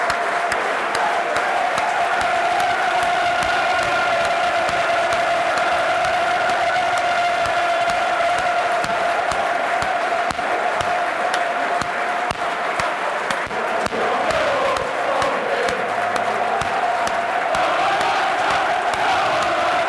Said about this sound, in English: No applause for the COVID victims, not the COVID itself. Also the COVID victims, both sets of players and fans. Minutes of applause.